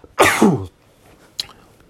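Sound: sneeze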